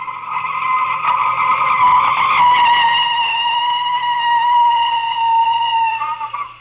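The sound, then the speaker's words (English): A loud, sustained tire screech as a car skids to a halt at the corner of 2nd Street, the high squeal holding steady for several seconds before cutting off abruptly, with no voices. “Stop the car. Okay, I'll stop it here at the corner of 2nd Street.”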